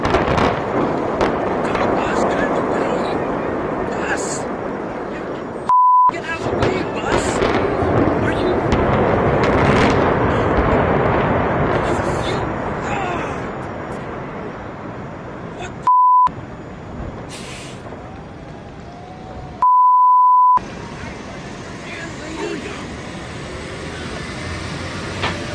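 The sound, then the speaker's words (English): A loud, sustained roaring rumble from a stadium demolition explosion blends with the heavy drone of a passing bus that stops in front of a cameraman, broken by three short electronic bleeps, with voices faintly present. “It's like the bus was like, oh, the stadium's blowing up.”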